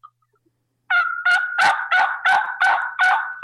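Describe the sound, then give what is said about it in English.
A steady series of about eight loud turkey yelps made on a turkey call, evenly spaced in a deliberate rhythm after a brief silence, with no talking. “So when you yelp, just remember, slow it down and make a very distinctive, very deliberate pattern, yelping a rhythmic pattern.”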